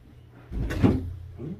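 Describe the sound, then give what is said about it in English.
A door gets bumped with a foot: one dull thud with a brief rattle of the frame, followed by a softer knock as it settles. “Not your ass in the door like that. It was my foot.”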